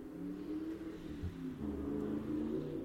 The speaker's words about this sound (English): Oh my god, I heard that car go by.